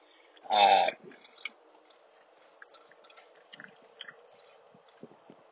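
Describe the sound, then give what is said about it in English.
One loud gulp of drinking water swallowed, followed by a few faint wet clicks and quiet mouth noises in otherwise near silence. “Forgive that big gulp of water.”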